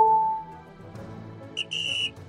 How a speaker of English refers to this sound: Well, the final whistle has blown.